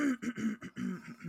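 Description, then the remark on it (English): Someone clears their throat repeatedly, a quick run of five or six rough, gravelly bursts with brief gaps between them, fairly loud and with no talking. “that seems to be my go-to starting the podcast noise, is just me clearing my throat over and over again.”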